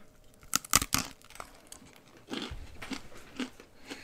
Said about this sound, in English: Ooh, pretzels got a good crunch to them. Here we go. There are pretzels. Stack two of them on top of each other.